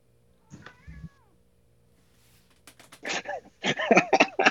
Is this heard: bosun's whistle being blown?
no